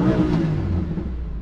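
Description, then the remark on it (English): A car engine revs loudly, a deep, steady roar with rich low rumble sustained through the short moment, no voices present. “I'm sure you'd rather take a Yaris. Just have a listen to this.”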